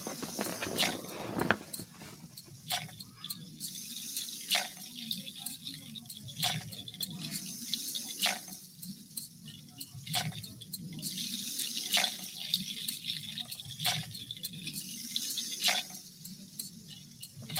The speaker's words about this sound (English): so we're going to give you guys a little bit of rain here as best we can. Perfect. little rain for you. And of course, that will begin to form the streams.